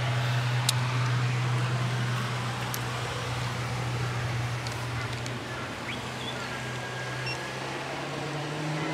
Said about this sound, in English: Just letting this boat go past. Yeah.